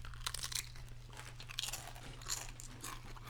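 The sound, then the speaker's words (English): Loud crunching of potato chips being chewed directly into a microphone, a rapid series of crisp bursts repeating irregularly over a low steady hum, with no talking. “And if you can, try to chew directly into the microphone.”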